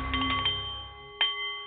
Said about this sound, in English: The Nepalese meditation bowl is chiming, centering your mind and delight on the art of the CEO